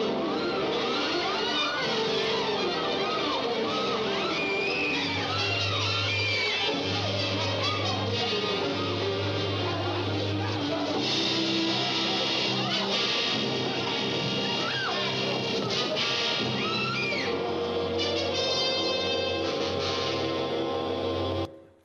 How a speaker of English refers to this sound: See all those people screaming out of the field.